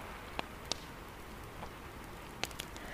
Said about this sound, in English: And now here comes the rain, the little pitter patter against the window pane.